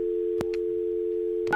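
A steady, continuous telephone tone hums throughout while a phone is being dialed, interrupted by a sharp click near the start and a brief burst of a higher keypad beep at the end, with no voices.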